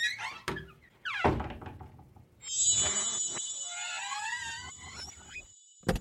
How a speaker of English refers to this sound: Put it in my second drawer and close it.